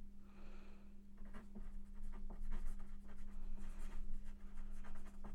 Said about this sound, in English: She's writing down. That's a lot of pencil sounds. I wonder if they can hear that. Okay. If they hear the pencil sounds, then she's really writing.